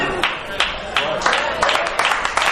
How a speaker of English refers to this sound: Y'all don't have to clap.